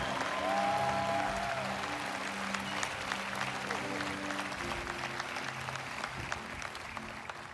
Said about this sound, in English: Give our musicians a great big hand clap for all they did, and the singers did a five-star job.